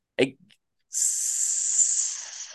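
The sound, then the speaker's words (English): After a brief soft thump, a sizzling sound effect starts and holds steady as a bright, fairly loud hiss for under two seconds, with no talking over it. “Man, let it sizzle, baby.”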